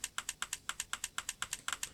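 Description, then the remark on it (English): A chat app's typing indicator sound, signalling that the other person is typing a reply: a rapid, evenly paced run of crisp keyboard-like clicks, about fifteen taps in two seconds, fairly quiet with no voices. “So did you hear it said the word Louise, which indicates that she's typing, and then you heard the typing indicator sound.”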